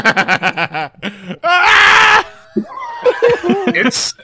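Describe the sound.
A person vocally imitates a giant man screaming in pain with every step as he lumbers from a car, a loud strained howl lasting under a second, surrounded by bursts of laughter and snickering from others.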